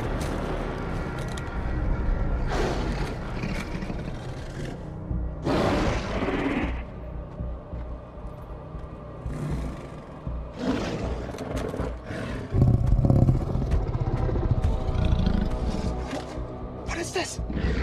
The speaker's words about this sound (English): That's a goddamn zombie tiger. That's crossing the line. You heard it right. This film has a zombie tiger in it.